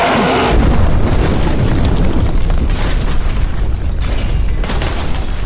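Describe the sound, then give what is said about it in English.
A massive explosion erupts with a loud, sustained boom, followed by a long roaring rumble of debris that stays thick and heavy for several seconds. “For just another moment until you guys hear a massive explosion.”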